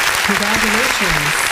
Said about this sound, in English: Okay, can we get a clap for that? We got to clap Yes.